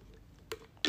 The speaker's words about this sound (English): Let me take a sip of my high protein shake.